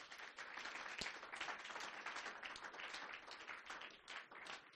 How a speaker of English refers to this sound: You are what? Clap for Jesus.